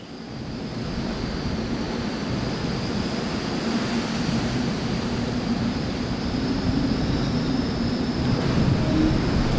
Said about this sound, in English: I'm out on the bow of the ship. I'm just trying to capture some Southern Ocean weather. I'm hiding behind some superstructure to try and break the wind. I've got the big hairy windsock on. It's blowing about 30 knots, maybe gusting to 40.